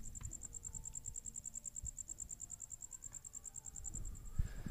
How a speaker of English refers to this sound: I'm trying to... make our listeners hear what the cricket sounds like.